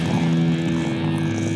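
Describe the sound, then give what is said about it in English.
A person imitates a tiger's roar, a loud, sustained, low growling rumble held steady for over a second, with a raspy buzzing texture throughout. “I'm going to try to make a tiger noise real quick.”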